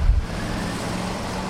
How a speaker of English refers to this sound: They're going to be watering germination broccoli with a pump. They're priming it right now. They're starting to prime the pump.